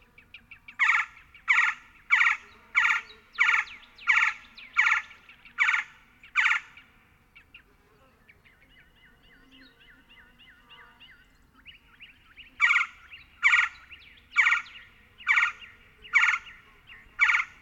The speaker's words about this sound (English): Woodpeckers commonly nest in the saguaros, especially the Gila woodpecker, which is easy to see and hear at Organ Pipe. Their loud chirrs sound virtually identical to the calls of the red-bellied woodpecker back home in the east.